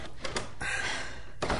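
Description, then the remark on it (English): A door opens quietly: a couple of soft latch clicks, a brief smooth slide or creak, then a muffled thump as it settles, with no voices. “Boss, it's this door.”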